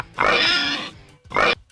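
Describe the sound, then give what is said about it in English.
Two loud, clear pig oinks with no talking: a long, drawn-out squealing grunt followed after a brief pause by a shorter, clipped one. “So I give that 1.5 oinks.”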